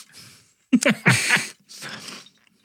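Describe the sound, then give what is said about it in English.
Crunching and chewing, a few loud, noisy bursts of food being bitten and ground, with short pauses between them and no talking. “Zell's vampire ears can hear you crunching from here and he's pissed.”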